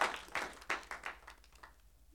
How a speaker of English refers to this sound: Clap for the Lord Jesus.